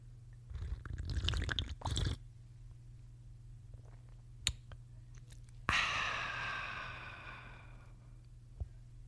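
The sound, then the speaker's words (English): A wet slurping sip of hot black coffee, then a soft click and a long, breathy satisfied exhale. No talking. “But as always, I'm going to get my black coffee. We're going to give it a sip.”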